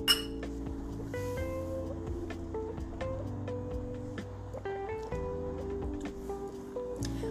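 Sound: wine glasses clinking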